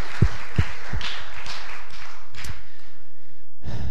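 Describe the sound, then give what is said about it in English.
A church audience claps together for God for a few seconds, a dense patter of hands with a few sharper, heavier claps standing out, then it thins and stops. No one speaks. “Let's clap to him for just for a moment.”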